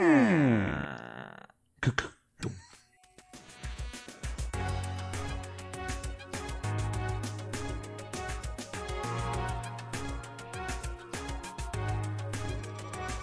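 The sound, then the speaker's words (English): A creaky door groans with a long, wavering creak, followed by a couple of sharp knocks, then steady rhythmic music begins and carries on to the end. “Need the creaky door.”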